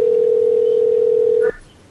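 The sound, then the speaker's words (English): A call to a cell phone rings on the line: a single steady, loud electronic tone holds for about a second and a half, then cuts off abruptly, leaving faint line hiss. No one speaks. “He's not even going to pick up. He'll pick up. It's unchristian-like not to pick up your cell phone.”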